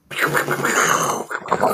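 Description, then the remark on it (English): A female dog growls while circling a person, a rough, throaty rumble that holds steady and fairly loud for under two seconds, dipping briefly before a final gruff burst. “Let me get this animal away from me.”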